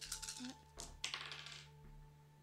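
Dice clatter and tumble across a hard tabletop in two quick bursts of sharp rattling during a game, then settle. A low steady hum sits underneath and no one speaks.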